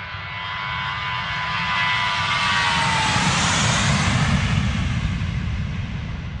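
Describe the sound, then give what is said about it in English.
A jet aircraft roars over the town of Queenstown, its broad rumbling noise swelling and holding loud while a high engine whine slides downward in pitch as it passes. No one speaks. “Queenstown's international air traffic has increased by more than 500% in the past decade, with a 50% growth in passengers.”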